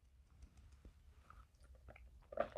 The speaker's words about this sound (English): Slurp. And there goes the last of my blueberry lemonade. Maybe not. There's one more swig. It's like backwash sauce, so I'm going to drink it real quick.